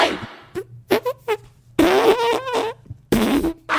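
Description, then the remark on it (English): A series of loud, wet raspberry-like fart noises made by a person blowing with the mouth against their arm, several short bursts followed by two longer, buzzing blasts with a sputtering, quivering texture. No talking. “Because yeah since you guys deserve it and since you gals deserve it, this is me making a fart sound on my arm in the act break.”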